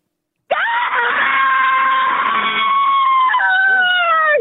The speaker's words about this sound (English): She just wants to go. She's only here to scream.